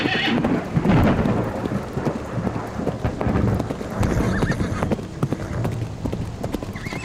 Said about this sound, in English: Okay, you continue on through the storm